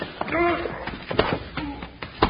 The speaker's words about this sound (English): you knocked him back into that big stone statue and he hit his head on it. You know, that's kind of funny.